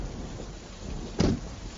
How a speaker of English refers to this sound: The pickup truck plows through the storm as rains fall down harder and harder.